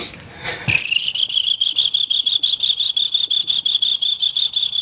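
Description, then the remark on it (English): A person imitates a brown tree frog's call: a high, steady trill of rapid, evenly spaced pulses that starts after a brief rustle and carries on loud, with no talking over it. “Brown tree frog? That's a brown tree frog.”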